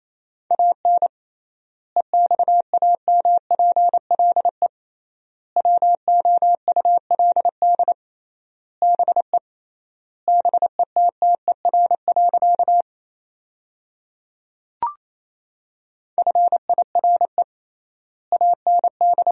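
Rapid Morse code at 28 words per minute sending sentences made from the top 400 words with triple word spacing: a steady mid-pitched tone keyed into quick dots and dashes, grouped into words with long pauses between them, plus a brief click partway through.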